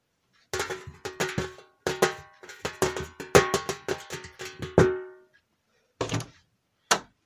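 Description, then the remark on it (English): A lock in an office being picked with a paper clip: an irregular flurry of sharp metallic clicks and clanks with a slight ringing tone, then a pause and two final separate clunks. “Right, let's pick the pot. Lock. I've got my paper clip.”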